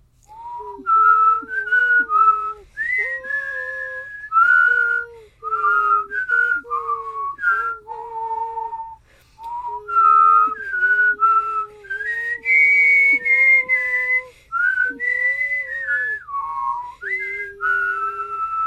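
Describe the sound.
Several people whistle the Harry Potter film soundtrack theme together in unison, carrying steady, sustained phrases with brief breaths between them, fairly loud, with no talking.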